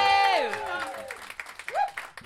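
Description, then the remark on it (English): An audience at a Comedy Arcade show at the Edinburgh Fringe on a Saturday night applauds for Doctor Who with scattered, irregular clapping, while loud whooping cheers with sliding pitch rise above it at the start and again partway through. “Can we have a round of applause for Doctor Who as well?”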